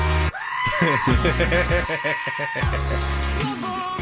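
A goat screams loudly and close up, its cries coming as a series of wavering, strained bleats that rise and break, with a steady low drone underneath.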